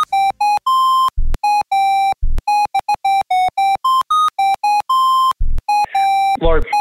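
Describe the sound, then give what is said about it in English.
A bright, electronic mobile phone ringtone of a rap song plays a rapid, choppy melody of synth tones over a thumping low beat, loud, with a vocal-like sweep near the end. “Do we have another ringtone we can play?”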